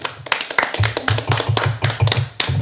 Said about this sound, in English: Round of applause for